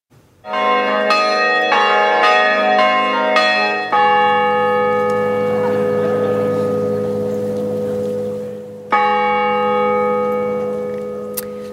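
Large bells at Mission Hill Winery in West Kelowna peal in quick repeated strikes at sunset, ringing 100 times to mark each year since the end of the First World War, then settle into long, resonant ringing with rich overlapping tones, one more loud strike near the end. No one speaks.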